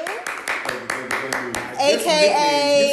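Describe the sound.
A short round of applause welcoming a new guest to the show: about half a dozen sharp, evenly spaced claps in a steady rhythm, then voices take over as the clapping fades out.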